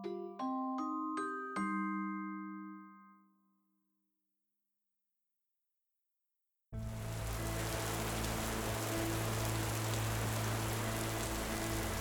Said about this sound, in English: It was autumn in Ravnica, and so it rained. The torrent from the sky splashed over gutters full of shattered glass and broken bricks, and drummed on the ruins of shops and houses.